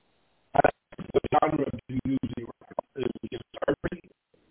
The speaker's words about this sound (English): Let's see, your phone is breaking up. Yeah, okay, you can hear that too.